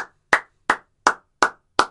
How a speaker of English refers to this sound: I think that clap was a little too fast. I think maybe we should slow that one down.